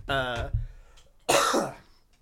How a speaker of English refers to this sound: Sorry, I'm drinking coffee. It's making me cough.